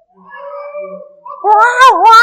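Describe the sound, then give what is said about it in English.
A sellout crowd yells wildly on cue when a microphone is pointed at them, starting with thin, drawn-out wavering tones and bursting into a loud, warbling, cat-like yowl that ends abruptly, with no speech. “When I point the microphone / controller to you, you guys go wild.”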